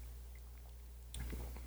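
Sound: sipping beer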